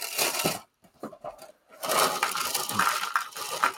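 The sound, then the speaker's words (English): Dry cereal is poured into a bowl: a rattling cascade of small hard pieces clattering in, loud at first, pausing briefly, then resuming in a steady crackling pour with scattered sharp clinks. “I probably should have poured two bowls.”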